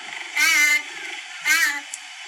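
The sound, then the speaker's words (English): Two high, whining meow-like calls from a cheetah, each under half a second, with a steady low rumbling purr running underneath throughout. “It's a big kitty. Sounds like a baby. And they're purring too, you can hear.”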